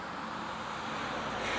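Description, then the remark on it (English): A car goes by on Southwest 27th Street, its steady rushing road noise filling the short moment and swelling slightly toward the end, with no voices. “Wait for this car to go by.”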